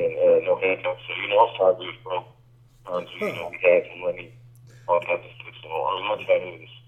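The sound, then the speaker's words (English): Garbled, tinny speech comes through a poor phone line, with a steady low hum underneath and a brief dropout before the choppy voice resumes in bursts. “Yeah, we got a real bad connection right now.”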